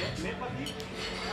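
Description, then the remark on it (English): Glasses clink together in a quick toast, a couple of bright taps near the middle, over a steady murmur of voices and room noise. “Here, cheers.”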